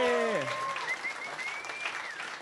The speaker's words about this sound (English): Guys, give a big round of applause.